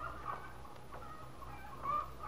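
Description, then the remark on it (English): Chickens cluck in the morning in a few short, scattered bursts, fairly soft, over a steady low background hum. No one speaks. “Sounds like the chickens are extra hungry this morning.”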